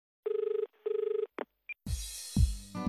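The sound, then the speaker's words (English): Two rapid trilling telephone rings in quick succession, loud, followed by a couple of sharp clicks and then a rough, noisy rumbling sound that swells toward the end. “Well, let's get on the old paleo phone and give him a ring.”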